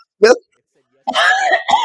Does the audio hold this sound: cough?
yes